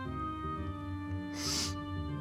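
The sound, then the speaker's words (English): A single deep sniff, a breathy hiss lasting under half a second, rises over a steady humming background tone and then fades. “A deep sniff.”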